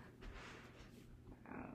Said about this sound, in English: Oh no, that pig is back.